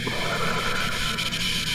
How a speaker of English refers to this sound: Good, good. You guys sound great breathing over there.